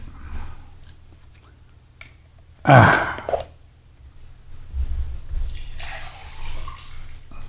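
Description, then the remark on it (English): A short burst of hydrogen water splashing or pouring into a container, lasting under a second, followed by quieter faint trickling and handling sounds. “Water. Okay, so.”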